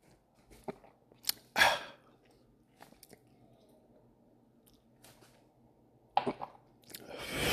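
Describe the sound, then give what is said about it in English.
Someone takes a sip of a drink: a few loud, wet slurping bursts separated by quiet mouth clicks and swallows, with no talking. “Take a sip with y'all.”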